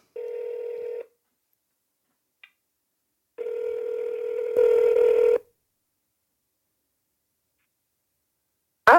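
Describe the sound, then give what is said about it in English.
Telephone tones as a call is placed: a steady electronic ring-back tone sounds for about a second, pauses, then returns longer and louder, with a small click in between and a sharp click at the end. No one speaks. “So let's call her.”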